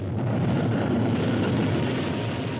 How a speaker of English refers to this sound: Progress is the sound of a motor, the hum of a turbine, the heartbeat of a factory, the sound of a symphony, the roar of a rocket.